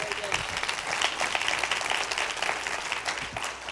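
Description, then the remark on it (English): A crowd bursts into steady applause for God, dense overlapping hand claps forming a continuous crackling wash that holds at an even level for several seconds. “Give God a hand clap.”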